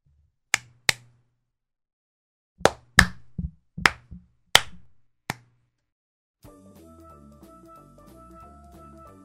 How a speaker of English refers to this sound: Happy beeps. Make sure you're happy. And then you can clap your hands.